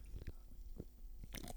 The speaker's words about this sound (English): That's a gulp. That's not a sip. Is it good or is it shit? Well, no, it's not bad.